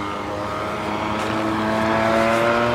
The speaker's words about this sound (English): Man, it's just a little scooter they just went by. Man, that thing's fucking loud.